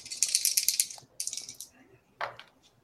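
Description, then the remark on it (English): Dice rattle in quick bright clicks, shaken in two bursts of clatter, then a short final tumble as they land, rolling a 5. Sharp, clicky and fairly loud over a faint background hum. “I rolled a 5. That'll do it.”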